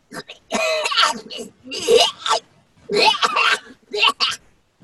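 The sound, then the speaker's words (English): A voice imitates a trash can vomiting, making four loud bursts of harsh coughing and retching with brief pauses between them. “It's a combination of a cough and a retch.”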